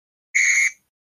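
A single short, shrill whistle blast from a blue whistle, steady in pitch and fairly loud, lasting about a third of a second with silence before and after.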